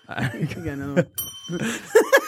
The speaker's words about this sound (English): Give me that fucking bell, you dumbass.